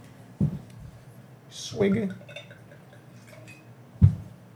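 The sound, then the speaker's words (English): A drink is poured into a cup in a brief splashing burst, framed by two sharp clinks of glassware, one before the pour and one after, over a low background murmur. “The pour it sounds cool.”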